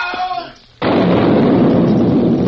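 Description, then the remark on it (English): After a brief fading voice and a moment of quiet, a dam is blown up: a massive explosion erupts abruptly, throwing huge pieces of rock and wood into the air, and rolls on as a loud, sustained, rumbling roar that could be heard for miles. “With a roar that could be heard for miles, part of the dam seemed to jump into the air, throwing huge pieces of rock and wood in all directions.”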